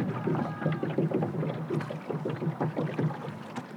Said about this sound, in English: When you get really used to rowing, you get better at slipping the oars into the water, sometimes without noise. However, I don't work too hard at that because I like the sound of oars dipping into water, so it's good either way.